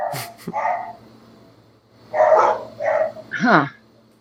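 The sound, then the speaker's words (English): A dog barks at home in two short bursts of about five barks, the last one pitched up into a yelping whine, with a low steady hum underneath and no talking. “what is Kona barking at?”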